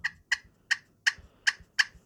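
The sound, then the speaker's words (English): Six sharp, raspy cutting notes played on a slate turkey call with the striker held at a sharp angle, fast and evenly spaced, each a loud high-pitched burst with a scratchy edge and no talking. “Like, you know, if I'm gonna cut real heavy, I'm gonna have the striker at a very, like, sharp angle.”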